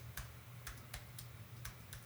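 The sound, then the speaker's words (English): Quick, uneven keystrokes clatter on a computer keyboard as someone types a search for balloon sculptures, about eight clicks spread over two seconds, fairly crisp over a low steady hum. “Typing away here.”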